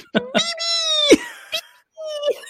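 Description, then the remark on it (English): A pet cat meows twice: a long, drawn-out call that drops in pitch at the end, then a shorter one after a brief pause, with a few sharp clicks and knocks around them. “Is that my kitty? Is that my kitty?”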